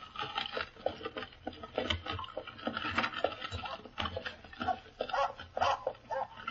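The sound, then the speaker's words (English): A dog snarls and growls in rough, rapid bursts as it tries to bite a woman in a carriage, amid a busy scuffle of movement and patter that runs throughout with no clear pauses. “By Jove, he's snarling. He's trying to bite the woman.”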